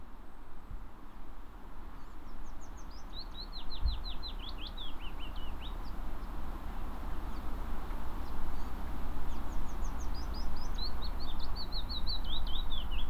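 Birds tweet in quick runs of short, high chirps, one burst early and another later, over a steady low outdoor rumble like wind. No one speaks.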